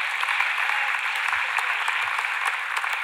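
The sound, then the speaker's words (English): An audience applauds with dense, steady clapping that holds at an even, fairly loud level for about three seconds, with no voices over it. “Yeah, it's worth clapping over.”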